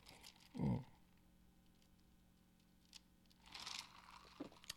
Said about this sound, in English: Sip my drink real quick.